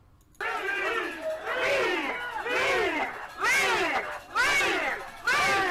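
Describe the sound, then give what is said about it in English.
A crowd at a restaurant, heard in a recording, cheers and whoops loudly, many voices overlapping in rising and falling shouts that surge in repeated waves after a brief quiet opening, cheering as Black people get up from the outside tables. “So they were cheering because they thought those black people were getting up to leave the business, when in reality they were leaving the outside tables because they didn't want to listen to this bullshit anymore.”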